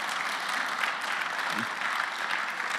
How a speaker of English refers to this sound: Yeah, come on, there's a round of applause beginning.